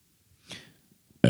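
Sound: burp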